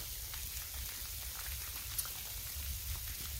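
Steady heavy rain pours down and grows heavier, a dense continuous hiss with scattered drips and taps, plus a low rumbling wash underneath. No voices.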